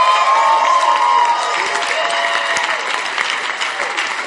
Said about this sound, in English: I'm surprised you are clapping. I thought today people wouldn't like to clap after hearing about dangerous sons.